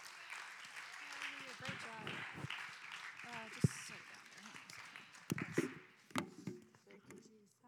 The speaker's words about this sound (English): But let's just clap your hands as she comes, and she's going to bring the word to us.